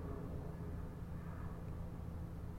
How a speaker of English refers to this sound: That's an airplane. Right there. Right. You hear the airplane. And again, the reason why I wanted to leave those in is because you see how good you would hear a person moving if you can hear a plane flying yes. over inside the building.